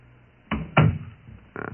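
A door swings shut with a solid thud, followed by a second knock-like bump and a softer rattle as it settles. No one speaks.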